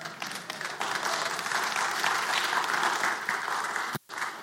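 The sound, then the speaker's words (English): A church audience claps during a sermon after the line that Jesus conquered sin, steady, dense applause, many hands blending into a continuous loud patter that holds for about four seconds, breaks off briefly, then resumes. “You can clap. Go ahead.”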